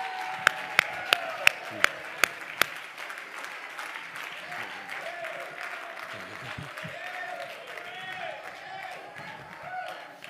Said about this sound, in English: Somebody shout, yeah! Clap your hands and give God praise.